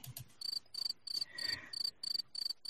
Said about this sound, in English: I have no idea who that is, but crickets. Oh, fine. Crickets.